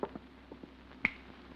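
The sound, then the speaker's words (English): A single sharp click of a light switch by the front door of a house at 1214A Euclid Avenue, preceded by a few faint soft taps and shuffles; no one speaks. “And now, there's that light switch.”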